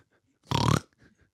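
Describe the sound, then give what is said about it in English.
A person imitates a pig with one short, loud, low and buzzy grunt lasting about a third of a second, with only faint murmurs before and after. “Your pig has a lot of bass.”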